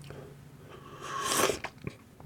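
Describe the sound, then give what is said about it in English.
An airy slurp rises and fades as someone takes a sip of hot tea, followed by a couple of soft mouth clicks or a swallow. No talking. “I'm sipping my tea here.”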